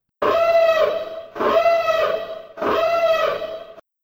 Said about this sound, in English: So yeah, here is the spoiler siren.